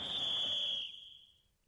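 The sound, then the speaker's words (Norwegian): A referee's whistle at a football match gives one long, shrill, steady blast that lasts under a second, then fades out quickly, leaving faint background noise. “Fløyta går, og plutselig strømmer folk mot utgangen, ned til kiosken og dassen.”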